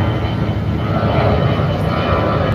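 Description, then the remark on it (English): A steady, loud airplane engine roar drones overhead at the nation's capital, a broad continuous rumble with no break across the whole stretch. “See, planes flying by and shit.”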